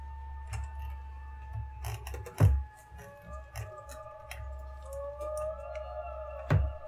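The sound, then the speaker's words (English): An eerie, sustained theremin tone wavers and slowly slides upward in pitch, held steady against a low rumbling hum, with a couple of sharp thumps and scattered faint clicks. “Is that the one of those creepy that's noises? The howler monkeys in a cave? It's theremin.”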